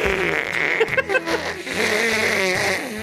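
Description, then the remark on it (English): A loud, drawn-out nose blow into a monogrammed handkerchief, with a honking, sputtering tone that wavers and rattles for about three seconds before trailing off. “Bless you. That was a monogrammed hanky that I had, but you can just go ahead and keep that.”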